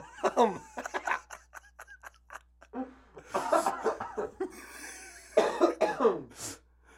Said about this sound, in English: Stop coughing, would you?